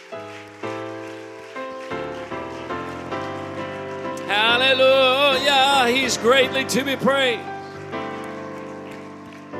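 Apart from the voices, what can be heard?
audience clapping hands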